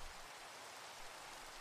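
Steady light rain falls in a soft, continuous hiss with no distinct drops standing out, fairly quiet and even throughout, with no voices.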